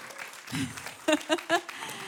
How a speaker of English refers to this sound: Can we honour your pastors? Give them a round of applause.